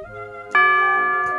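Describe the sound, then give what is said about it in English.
A bright chime rings out as the two o'clock signal, with a soft tone fading in before a louder struck note that sustains its ringing overtones, and a second faint strike joining near the end. “Well, there it is, the 2 o'clock signal.”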